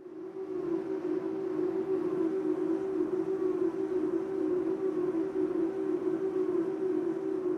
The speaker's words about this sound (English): Excuse me, is that a car? It sounds more like a drone. I know what this is because I'm a bit obsessed with these. Then it must be a wind turbine? Yes, from episode 77, all about floating offshore wind.